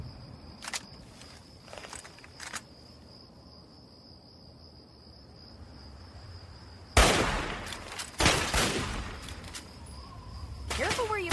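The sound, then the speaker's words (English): Two loud, sharp hunting rifle shots from a video game ring out a second apart with echoing tails, then a softer third shot, over a steady chirping-cricket night ambience. “I'll do the hunting rifle, I guess.”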